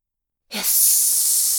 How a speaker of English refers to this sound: Hiss! Gas! The gas blew with hurricane force up to the tops of the spires.